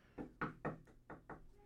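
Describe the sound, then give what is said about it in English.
Five quick knocks rap on a closed door as a four-year-old child tries to get in, a couple of groups of sharp thuds with short gaps between, moderately loud, with no voices. “We interrupt this program to bring a four-year-old trying to get into the door.”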